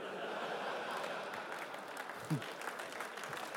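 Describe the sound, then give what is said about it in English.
An audience claps steadily throughout, a dense wash of many hands at moderate loudness, with a brief low voice or thump breaking through near the end. “Come on, this is your chance to clap.”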